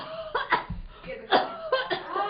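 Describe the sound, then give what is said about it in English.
A man in bed with a cold coughs several times in short, harsh, irregular bursts, with brief pauses and throaty breaths between coughs. “With that cough, drink it.”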